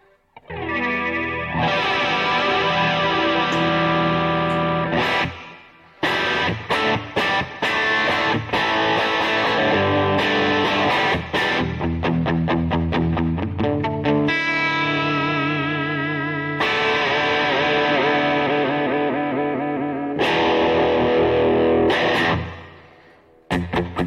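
An electric guitar played through a flanger pedal, its loud, sustained chords swirling with a sweeping, jet-like shimmer and some echo, broken by short pauses, with no voices.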